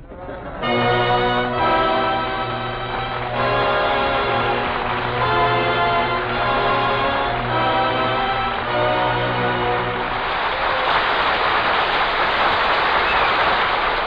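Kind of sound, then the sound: crowd, studio audience applause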